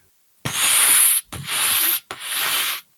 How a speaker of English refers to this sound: And moments later, you can hear the steam building up. And you hear the steam being expelled into this room.